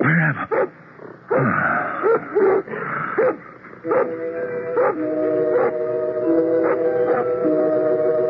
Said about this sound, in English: What is it that disturbs your conscious mind, Doctor? A dog barking.